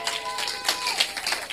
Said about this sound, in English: Be on your feet. If you have been blessed, give a clap unto the Lord.